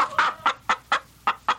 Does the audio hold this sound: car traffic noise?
no